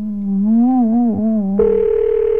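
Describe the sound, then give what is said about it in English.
A wavering, pitch-bending tone gives way to a steady, buzzing telephone ring tone on the line, loud, with a hiss underneath, like a call waiting to be answered. “Pick the phone up, will you?”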